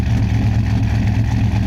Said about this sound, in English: It's got to be fuel injected because it started up. It's definitely a V8. But it's modified. Thing sounds super cammy. Intake. I think it probably has everything. Intake, exhaust. Fully built.